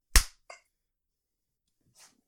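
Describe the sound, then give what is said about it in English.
A group claps their hands together once on a countdown of 3, 2, 1, in a sharp, loud burst, followed by a smaller straggling clap and, after a pause, a faint soft tap. No one speaks. “And we'll clap in 3, 2, 1.”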